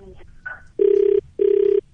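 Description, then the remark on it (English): A telephone ringback tone sounds twice as a phone call is placed, two steady, loud electronic buzzing rings of equal length separated by a short pause, heard after faint background noise at the start. “We'll patch a call through now, phone him”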